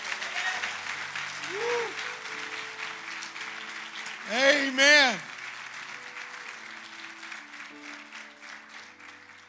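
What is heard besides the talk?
audience applauding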